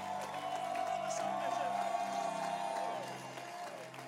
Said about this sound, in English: I think I want to welcome her to bring us a word, a greeting. Clap your hands for her.